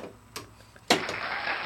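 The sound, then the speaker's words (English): A keyboard falls: a light click, then a sharp, loud crash followed by a steady hissing clatter that continues to the end. No one speaks. “Yeah, it was my keyboard falling.”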